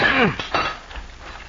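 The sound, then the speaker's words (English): A sledge and crowbar at work ripping a couple of rails from a railroad right-of-way: a ringing metallic clang that bends downward, then two sharp clanking strikes in quick succession, fading to near quiet. No one speaks. “as our story opens, are at work with sledge and crowbar ripping a couple of rails from the railroad right-of-way.”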